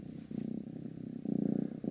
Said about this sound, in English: It's so soothing. A kitty cat purr.